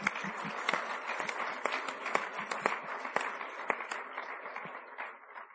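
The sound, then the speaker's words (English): A church audience applauds everyone from Northern Hills and The Rock who helped make the morning happen, in a steady wash of many overlapping claps, sustained and even for several seconds before gradually thinning and tapering off at the end. “Let's give them everyone a round of applause for that.”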